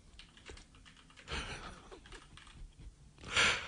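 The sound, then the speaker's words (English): Quiet, irregular clicking of a man typing on a computer keyboard, a run of soft keystrokes with a couple of louder bursts, with no one speaking. “One day I will have a major, like, medical event, and it'll be live on the radio, and in the background you'll hear him typing.”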